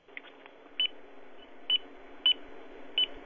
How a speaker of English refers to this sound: Fucking, if I can hear that beep, you can hear me calling you a shithead, you goddamn shithead.